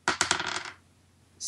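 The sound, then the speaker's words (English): Three six-sided dice clatter onto a hard table, a few sharp clicks followed by a brief rattling roll that settles within a second. Fairly loud, with no voices. “And now we're gonna do the 3d6 from the other thing.”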